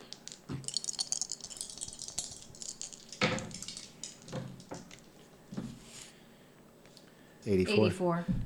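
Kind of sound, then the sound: percentile dice being rolled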